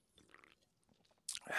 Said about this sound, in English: I'm going to have a little sip of water for that one.